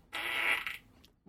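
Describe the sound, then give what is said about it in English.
A single short, raspy fart sound effect from a button, played loud for under a second, then cutting off into near silence, with no one speaking. “That mic is our new fart button.”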